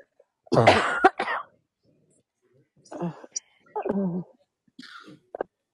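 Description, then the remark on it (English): A person coughs: one loud, harsh, raspy burst, then after a pause a few shorter, weaker coughs and throaty rasps spaced over several seconds. “that cough doesn't sound too good, man.”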